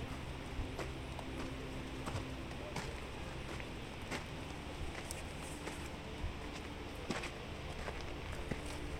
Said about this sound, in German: Zwischen den hoch aufragenden Bäumen führt ein Pfad entlang, auf dem sich deine Füße von dem festen Beton in der Nähe des Aussichtspunkts zu einem erdigen Pfad bewegen, der das Geräusch deiner Schritte dämpft.